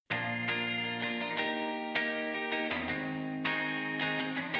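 A Fender Coronado II electric guitar rings out alone in a steady series of strummed chords, each attack blooming into a long, reverb-washed sustain that overlaps the next, fairly loud.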